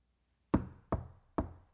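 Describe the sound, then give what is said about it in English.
Three firm knocks on a wooden door from the outside, evenly spaced about half a second apart, each with a short resonant decay, clear with no voices. “And I'm on the outside knocking.”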